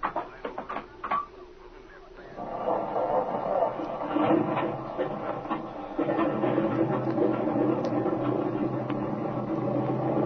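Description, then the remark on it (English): An airplane engine, just fixed by replacing a spark plug with cracked porcelain, sputters with a few scattered clicks, then catches and settles into a steady, loud droning roar with a rough, even hum that holds to the end. “That engine's talking now like a lady sewing circle.”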